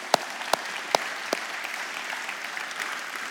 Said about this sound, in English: Maybe you're a volunteer in Connect Kids. Can we just give these folks a round of applause this morning?